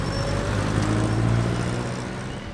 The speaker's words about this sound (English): Known for colorful buses called jeepneys.